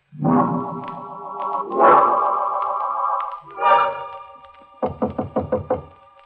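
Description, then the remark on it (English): Loud sustained chords swell and fade, then a rapid series of about six sharp knocks on a door rings out, evenly spaced, with no one speaking. “He knocks on my door.”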